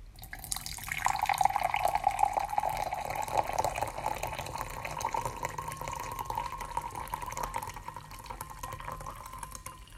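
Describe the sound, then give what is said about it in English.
A smoky, roasted tea steeped for about a minute is poured out in a steady, continuous stream, a bright liquid trickle that rises slightly in pitch as the vessel fills, lasting nearly ten seconds with no one speaking. “So I'm going to pour this out.”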